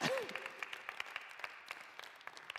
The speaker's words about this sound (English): Can you give Cassie a round of applause? Come on, Cass.